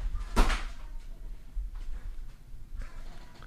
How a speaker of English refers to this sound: So hold on, let me open the door one more fucking time. All right, Barbas. Come on, buddy. You can come in here.